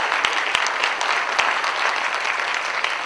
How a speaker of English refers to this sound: You can clap if you like it.